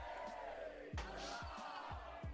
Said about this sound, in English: Yeah, there's all the cheering for Crixus.